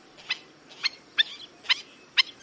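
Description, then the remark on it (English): Sharp, high yelping alarm calls of a black-necked stilt ring out five times at a steady pace, each a short, piercing, slightly harsh note over a quiet background, signaling that a predator has been seen. “Because of this, black-necked stilts are called sentinel birds.”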